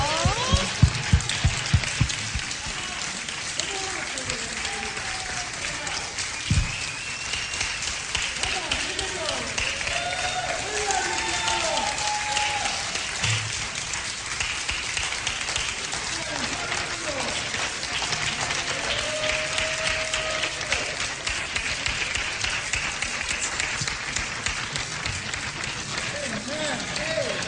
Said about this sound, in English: All right, we have to give an applause until she makes it all the way up here.